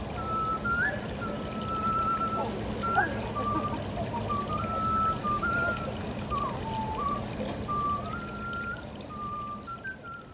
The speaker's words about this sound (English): whistled for the first time at the turtle pond, people stopped to listen. People applauded.